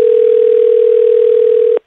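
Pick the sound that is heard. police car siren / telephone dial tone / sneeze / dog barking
telephone dial tone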